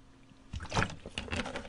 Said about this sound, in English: Hold on, swig of water.